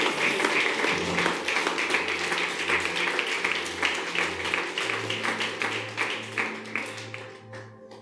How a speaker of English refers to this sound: Somebody shout an amen. Clap your hands. Receive it.